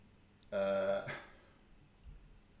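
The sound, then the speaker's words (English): A single buzzy, blaring fart noise made with the mouth, about half a second long and loud, ending in a breathy rasp, followed by quiet. “Shitting and farting, whatever that was. Fart noise.”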